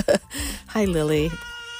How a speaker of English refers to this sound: It is December 8th, 2023, and I have a kitty cat crashing my recording.